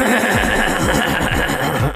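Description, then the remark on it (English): A person imitates a horse neighing, a loud, quavering whinny that rises and falls continuously for about two seconds, with no other talking. “I'm joined by a horse.”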